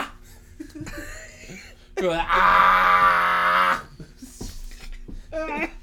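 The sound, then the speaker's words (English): A person imitates a humpback whale call with one long, loud, rising and wavering moan lasting almost two seconds, framed by shorter, quieter vocal noises and murmuring before and after. “Humpback.”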